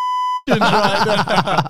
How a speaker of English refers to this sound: Hang on, dox that. Dox. Where's your beep button, bro?